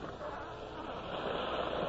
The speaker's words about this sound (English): The waves are very strong.